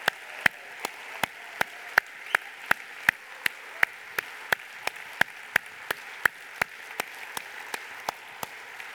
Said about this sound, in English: I told you, the reason we're cheering is just our way of saying we love you.